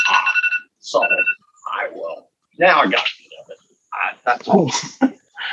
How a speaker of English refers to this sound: Was the phone going off there? Or an alarm? I can hear you. I'm trying to cancel it. I had timed myself.